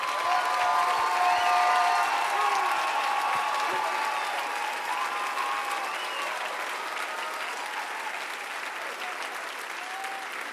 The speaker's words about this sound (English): Now, I wonder if we could collectively give these men and all of our leaders a rounding applause.